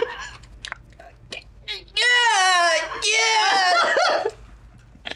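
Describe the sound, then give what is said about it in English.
A person loudly imitates eerie howls, letting out two long, wavering, pitch-sliding wails back to back after a moment of faint clicks and mouth noises. “And he's definitely like bruised, but you can see him like grin a little bit, and then he just starts letting out these unearthly howls.”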